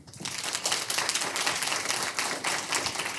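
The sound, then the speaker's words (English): A live audience at Story Connect bursts into applause for sponsor Meridian Cooperative, a dense, steady wash of many hands clapping that rises quickly and holds at an even loudness for a few seconds. “We are happy to have them sponsoring our live podcast here at Story Connect, and we can give Meridian a round of applause.”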